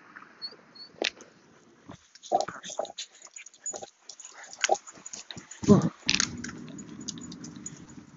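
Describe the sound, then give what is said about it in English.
A dog being walked by its owner whines in short, thin, high-pitched bursts while stopped at a crosswalk, amid scattered clicks, scuffs and crunchy handling noises, with a faint murmur of background activity. “Hearing the dog whining, it's because we're at a crosswalking.”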